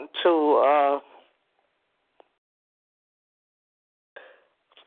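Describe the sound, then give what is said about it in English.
A single loud sneeze with a voiced, drawn-out burst lasting about a second, followed by near silence and a faint shuffle or breath near the end. “Bless you.”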